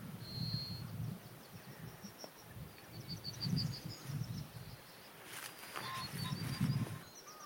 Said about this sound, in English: Some yellowhammer singing on the edge of a field of oilseed rape.